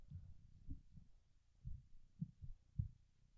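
A cat purring right up against the microphone as it lies beside a person during a recording session and has its head petted, a soft, low rumble that throbs in uneven pulses, quiet and close, with no voices.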